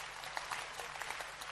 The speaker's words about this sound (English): Clap for Jesus, somebody.